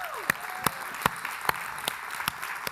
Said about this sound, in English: So thanks, and shout out to all the team leaders. Can you give your team leader a round of applause, please?